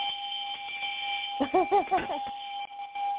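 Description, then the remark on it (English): A short bell sound effect given to a first-time caller on a call-in show: about four quick, bright ringing tones in a rapid run, sounding over a steady thin electronic hum that runs through the whole clip. “Okay, well, if you are, doesn't matter. You still get the bell.”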